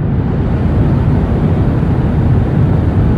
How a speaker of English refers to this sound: Turns out that the 80 or so decibels of white noise that are pounding your ears from the jet's engines, they reduce your ability to taste salt, reduce your ability to taste sweet, and increase your ability to detect and enjoy umami.